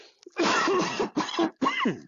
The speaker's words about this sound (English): It's going to be a lot of cough.